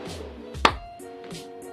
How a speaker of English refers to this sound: You can do your clap now.